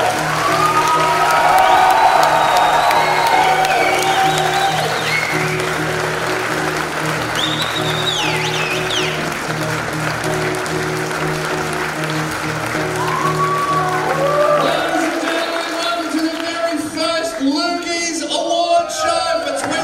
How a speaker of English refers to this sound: And while I play it, I want you to applaud, sing along if you know the words, there are none.